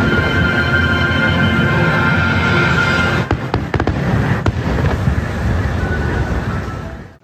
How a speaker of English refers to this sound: For your birthday, I decided to throw you a very big fireworks celebration.